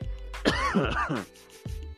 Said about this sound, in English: I'm about to cough, y'all.